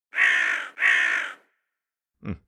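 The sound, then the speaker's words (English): Near crop fields set with scarecrows, two loud, harsh crow caws sound in quick succession, each about half a second long, followed after a pause by a shorter, fainter call. No one speaks. “All right, fine, I'll take all the scarecrows down too. Birds.”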